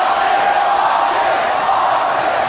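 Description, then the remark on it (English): A large arena crowd chants and roars for Stone Cold Steve Austin in one loud, unbroken wash of many voices, holding steady for a couple of seconds with no single speaker standing out. “He's chanting for Stone Cold here.”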